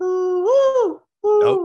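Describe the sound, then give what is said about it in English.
A bird clock, a New England classic, plays its 7 a.m. mourning dove call: a hollow, hooting coo that swells upward and sags, then after a short pause a second, steadier coo. No one speaks. “That's the morning dove.”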